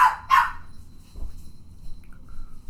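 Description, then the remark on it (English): Two quick, loud barks, voiced by people imitating a dog, come close together right at the start, then fade into a quiet low rumble with a faint high chirp near the end. “Bark with me if you're my dogs.”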